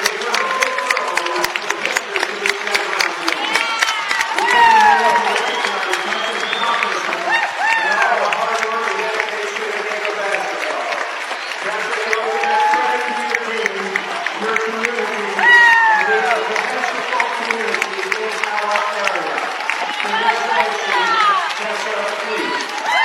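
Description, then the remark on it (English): A large crowd rises for a sustained standing ovation at a Westwood basketball game, honoring a player who just reached 1,000 career points; steady dense clapping mixed with cheers and shouting voices lasts over twenty seconds, with a brief swell near the middle. “as the crowd rises to its feet.”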